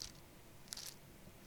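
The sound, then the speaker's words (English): Thin Bible pages turning to Hebrews chapter 7: soft, crisp papery rustles in a few brief bursts, one at the start, a pair in the middle and another at the end, all fairly quiet with no talking. “You see me trying to turn my pages. I like to hear those pages turn.”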